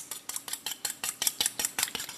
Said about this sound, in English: But first, I am going to serve it with some whipped cream, so let me get some whipped cream ready. I just poured some whipping cream into a bowl, essentially, and I'm just going to whisk it.